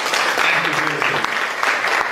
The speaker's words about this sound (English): I mean, actual hostile environment 3 different times for no reason at all. Can we clap for this?